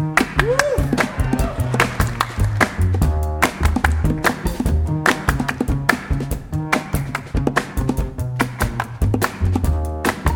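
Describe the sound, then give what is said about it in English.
The instrumental intro of a new song from a 2016 album, with busy, clattering percussive hits over a steady, stepping bass line, played loud with no singing. “But this is now June 15th, 2016, and queued up is music from the new album”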